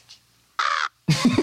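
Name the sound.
crows cawing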